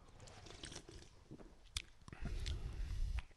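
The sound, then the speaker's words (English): A sharp crack as a can of lager beer is opened, then a second or so of wet sipping and swallowing sounds, with no talking. “All right, well, should we give it a crack and a sip?”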